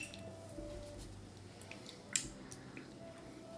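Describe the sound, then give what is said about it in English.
A single bright clink of glasses touching in a toast, short and ringing, rising briefly out of quiet surroundings with faint low rumble and small scattered clicks around it. “Nice and opaque. Cheers. Cheers, brother.”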